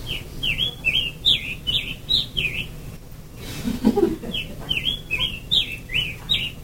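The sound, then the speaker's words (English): A scarlet tanager sings two runs of quick, hoarse, burry phrases with a robin-like rhythm, separated by a short pause, over faint low background rumble. No one speaks. “So then the announcer said that said that the way you can tell a scarlet tanager is that it sounds like a robin with a sore throat. And so here's a scarlet tanager.”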